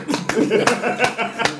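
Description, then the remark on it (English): Four sharp hand claps land at a steady, even pace, each a crisp slap, while voices talk and chuckle underneath. “Clap, goddamn it.”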